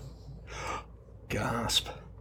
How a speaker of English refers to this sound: Gasp, really? Big gasp.